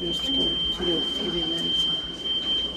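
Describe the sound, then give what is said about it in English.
A hospital patient call alarm sounds as one steady, unbroken high-pitched electronic tone that holds throughout, with muffled voices and clatter murmuring underneath. “God knows why, but the patient's call button in this place isn't a bell or a buzzer like in any normal hospital. It's this.”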